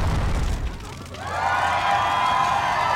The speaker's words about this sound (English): People cheering for Dragonfire? Absolutely criminal!